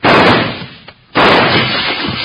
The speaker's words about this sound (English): who's doing that shooting? That came from this end of the street.